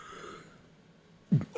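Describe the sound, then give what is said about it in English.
A breathy, drawn-out yawn that trails off into quiet, followed by a short, low throaty grunt or throat-clearing sound near the end. “Oh, yawning.”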